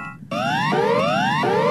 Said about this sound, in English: EAS alarms from different countries.